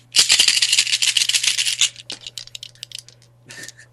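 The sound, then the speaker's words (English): A handful of polyhedral Dungeons and Dragons dice from a smoke-coloured set rattles vigorously for nearly two seconds, a dense bright clatter, then trails off into scattered lighter clicks and one final brief shake, with no voices. “You hear my dice?”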